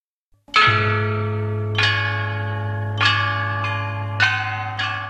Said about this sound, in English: The chime bells are a member of the percussion instrument family in China that has a history of well over 2,000 years. Cast with bronze, a set of chime bells consists of bells in different sizes, arranged to the order of pitch,